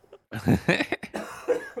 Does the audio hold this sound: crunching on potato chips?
no